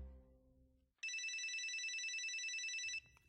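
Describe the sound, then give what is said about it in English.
A cell phone rings loudly, a bright electronic trill that warbles rapidly for about two seconds before cutting off, with a low rumble just before it. “And we'd appreciate you turning off your cell phones while we wait.”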